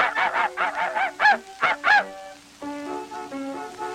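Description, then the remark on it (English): Cartoon hot dogs barking in the early Mickey Mouse cartoon The Carnival Kid, as Mickey stabs them: a quick run of about eight squeaky, honking yelps, the last few louder, followed by steady tonal notes like music. No one talks. “Those dogs are barking.”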